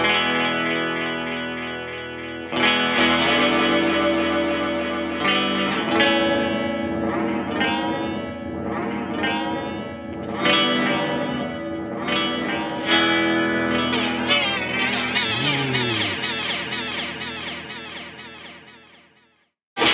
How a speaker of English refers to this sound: That is the Earthquaker Devices Avalanche Run. Earthquaker Devices Avalanche Run Delay Reverb Pedal.